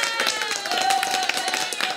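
A short burst of applause at the end of a show, with quick, dense hand claps running steadily and fairly loud throughout, over a faint sustained tonal hum in the background.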